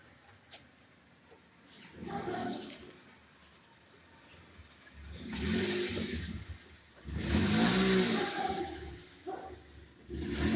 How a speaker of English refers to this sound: All right, so this is the end of my tour of this famous Callejón del Aguacate. And as you can see, many cars still drive by it. It's very well used.